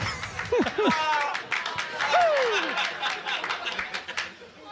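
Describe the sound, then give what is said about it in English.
An audience at a comedy roast claps steadily throughout, a dense patter of hands mixed with cheering voices and a few rising and falling whoops, fairly loud and continuous across the whole stretch. “I'll repeat that one so it doesn't get drowned out by the audience applause, since this is the best joke I wrote and I did it first.”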